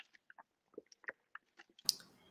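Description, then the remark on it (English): Someone sips water: a string of small wet mouth clicks and lip smacks, then a louder gulping burst near the end, with no talking. “Pardon me while I pause just mere moment for a sip of water.”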